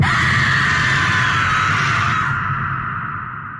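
A woman's eerie, ghostly scream rings out loud and sustained for a few seconds with a hollow, reverberant quality, then slowly fades away. No one speaks.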